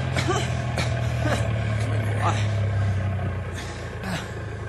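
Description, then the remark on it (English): A truck engine rumbles steadily with a low, continuous drone, fairly loud, easing off slightly toward the end as the truck slows to a stop. “I'll stop the truck.”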